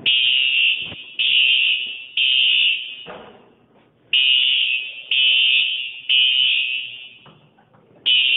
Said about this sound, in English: The smoke detector alarm usually is, like, slow, chill. It's like, whoop, whoop.